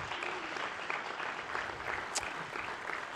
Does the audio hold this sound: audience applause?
yes